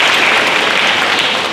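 A crowd claps steadily, a dense, even wash of many hands applauding at full volume with no pauses and no voices audible. The audience at a church service is applauding a participant who helped tell a joke.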